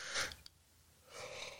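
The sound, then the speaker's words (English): A single yawn: a sharp breathy intake, a brief pause, then a long airy exhale that trails off, with no talking. “Excuse me, it's my birthday. I can yawn.”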